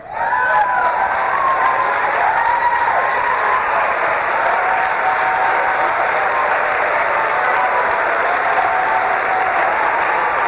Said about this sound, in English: You ought to clap your hands and get up and buck and pitch.